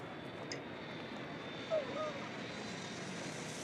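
A steady, even rumble of cabin ambience inside a dark, empty parked airplane that has just been opened after cleaning, constant throughout, with a brief faint chirp near the middle and no clear speech.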